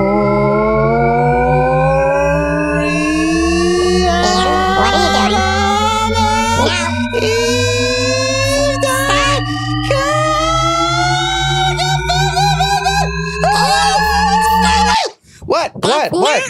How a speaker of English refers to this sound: Here, I'm going to play it. Okay, listen. The pitch keeps going up, up and up and up and up and up. Hmm. And it'll just keep going up infinitely. Oh, yeah. Called the shepherd tone.